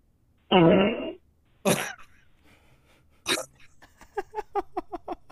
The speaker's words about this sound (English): So, ladies and gentlemen, our first submission for the fart competition. Yes, I'm so excited. It better be good.